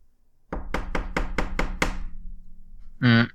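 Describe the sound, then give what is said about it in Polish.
Six quick, evenly spaced knocks on a door, firm, with a faint low hum lingering afterward before a short, harsh tonal burst at the end. “I nagle w tym momencie, jakby w odpowiedzi na tą całą sytuację, pukanie.”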